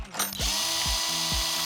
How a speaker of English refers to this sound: power drill with a 3/16 drill bit, please. On it.